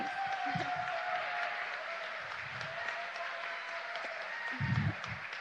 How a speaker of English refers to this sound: Thank you for applauding my family. I applaud my family.